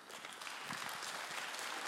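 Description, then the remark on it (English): An audience claps together in a dense, steady burst of applause that holds at an even, fairly loud level for about two seconds, with no voices standing out. “Better clap for that.”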